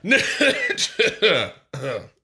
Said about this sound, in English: And then he just tries to fudge it by coughing while he says it. Klaatu Barata.